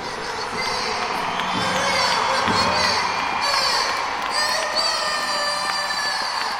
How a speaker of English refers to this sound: Teams are coming out now to thunderous applause. Great to see such a big crowd, so much excitement around this game.